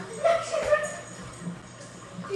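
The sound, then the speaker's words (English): A female dog barks two or three times in quick succession near the start, then things settle into quiet background noise. “Your dog won't leave me alone.”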